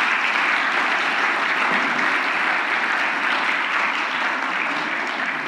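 A crowd claps steadily for several seconds, a dense, even wash of many hands with no pauses, holding loud throughout and easing only slightly at the end, applauding a church choir at a live worship service on the Court Square in Barberville, Kentucky.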